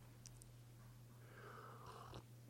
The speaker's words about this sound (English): I'm having a little tea here, sipping.